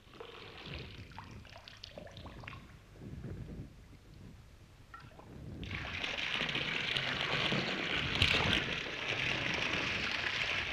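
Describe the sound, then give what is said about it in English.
A quiet stretch of low rumbling gives way midway to a loud, steady rush as an electric water pump is switched on, raising water from a well and forcing it uphill to a tank on a hill, its hiss of forced water running continuously to the end. “the hard work of early winter, the work of digging and pipe laying and setting up the tank on top of a hill, that came to an end when the electric pump was switched on.”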